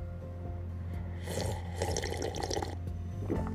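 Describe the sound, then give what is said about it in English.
A wet slurping sip of hot coffee from a mug, drawn out for a second or so, followed by a brief second sip, with a steady low hum underneath. “Coffee cheers, my friends, to another beautiful day.”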